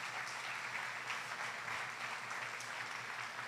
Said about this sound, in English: Glory to God. Give a good applause to God because he's good and he's awesome.